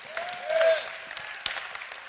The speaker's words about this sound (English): Go ahead and do that right there. We need to clap your hands and shout unto God.